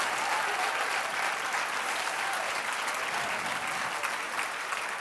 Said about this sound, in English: All right, you're clapping on my time now.